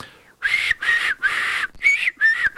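A person whistles badly in short, breathy bursts, about five airy toots with wavering pitch and hissy noise, fairly loud, with brief gaps between.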